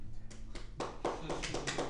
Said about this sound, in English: No, fucking stop clapping.